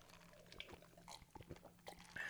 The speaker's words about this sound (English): We just drank seltzer water. In your honor, Germany.